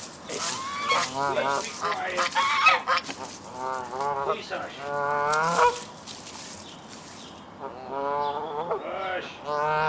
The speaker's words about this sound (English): What the fuck is that noise? Oh, shit, my guard goose is going off.